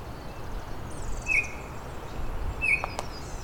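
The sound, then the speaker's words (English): Thin, very high-pitched Blackburnian warbler song drifts in from a bit far off, faint against a steady outdoor hiss, with a couple of short, brighter chirps from another bird. “I'm hearing Blackburnian warbler. It's a bit far off though”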